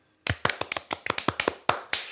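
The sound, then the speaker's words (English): A quick rhythmic run of about a dozen sharp hand claps, crisp and fairly loud, with no voices, ending in two slightly more spaced-out claps. “Hand clap.”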